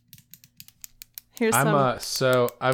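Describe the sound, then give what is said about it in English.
A quick run of about nine sharp clicks from a retractable pen, fired off rapidly and a little unevenly, followed by a loud voice taking over. “Actually, I had to dig up another pen, but it was a clicky one.”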